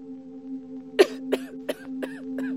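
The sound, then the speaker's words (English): A fit of about five coughs in quick, evenly spaced succession, the first the loudest and the rest gradually weaker, over a steady low electrical hum. “Don't worry, everyone. It's just a cough.”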